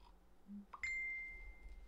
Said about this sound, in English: Let me just turn off this notification off my phone because that's really distracting.